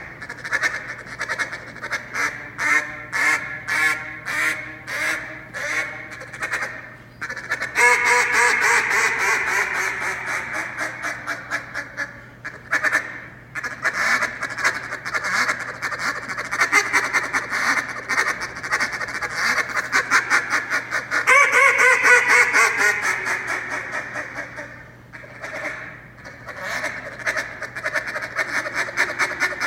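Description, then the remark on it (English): A competition-style duck call routine by the 2019 World Live Duck calling champion from Easton, Maryland, played loud: strings of sharp, rhythmic quacks building into long rapid rolling runs, then easing off before another burst, with no talking. “2019 World Live Duck out of Easton, Maryland. Let's listen to his routine.”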